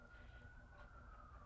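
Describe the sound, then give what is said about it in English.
An emergency siren holds a steady, thin high wail that drifts slightly in pitch, sitting faintly over a low rumbling background with no voices. “You hear the sirens.”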